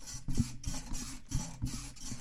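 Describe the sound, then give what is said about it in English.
A microphone stand creaks over and over in a quick, uneven rhythm, about six scraping squeaks in a row, moderately loud with no one talking. “This microphone stand needs an oil.”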